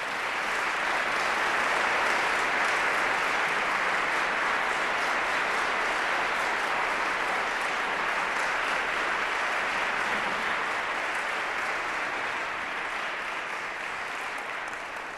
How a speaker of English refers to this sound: Thank you so much. Could you give him a round of applause?